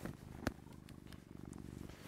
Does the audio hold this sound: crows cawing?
no